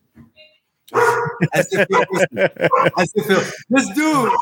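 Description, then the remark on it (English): A dog barks in a rapid, steady run of loud yaps lasting several seconds, after a brief faint sound at the start. “I love this dog so much.”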